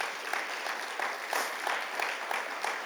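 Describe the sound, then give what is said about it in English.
A room full of people clapping their hands, a dense, steady patter of applause, even throughout, with no voices standing out. “Come on, clap your hands today.”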